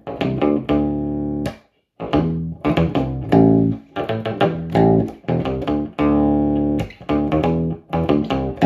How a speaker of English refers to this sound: The only problem with the octave is it doesn't track very well, as you can hear that, so it sucks.